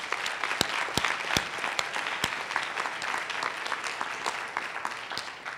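An audience applauds steadily for several seconds, a dense wash of clapping with a few sharper, louder individual claps popping out. Nobody speaks.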